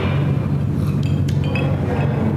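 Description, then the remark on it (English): Several light glass clinks ring out in quick succession as glasses of bourbon are touched together in a toast, over a steady low rumble of background noise. “We begin with a toast at 477. Let's raise a glass, friends.”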